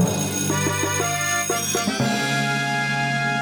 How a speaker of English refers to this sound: Stats, play the bell for Spence. Play the bell, big dubs.